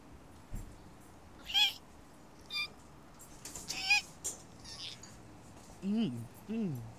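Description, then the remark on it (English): Several short, high-pitched squeaks from biting into a hot dog, spaced irregularly, followed by two lower, whiny squeals at the end; no talking. “Yeah, is that the best squeaky dog you've ever had in your entire life?”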